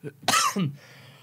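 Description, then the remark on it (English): A pair of quick, raspy coughs close together, the first sharper and louder, the second shorter and lower, with no talking around them. “You may know Cough Cough, famous actor.”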